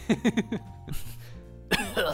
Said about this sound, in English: Yeah, guys, I think I've got a fever. Oh, fuck. Be right back. Oh, I gotta go cough on some people.